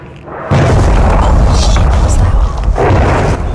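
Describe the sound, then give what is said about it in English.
A sudden, very loud explosion bursts out close by during a pitched battle between Kurdish fighters and ISIS, its deep booming blast rolling on as a heavy rumble for several seconds. “Really loud explosion very close to us.”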